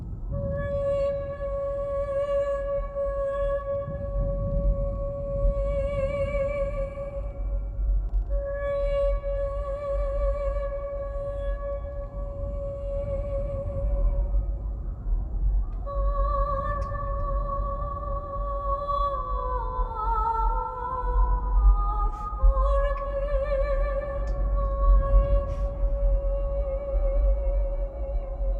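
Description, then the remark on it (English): Eerie, otherworldly singing from a dead deer: long sustained tones that waver and slide in pitch, layered in ghostly harmonies over a constant low rumble, continuing throughout with no talking. “DJ and the dead deer are alone. They acknowledge each other. The deer continues to sing.”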